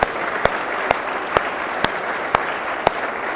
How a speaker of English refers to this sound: And one more round of applause for the four of them.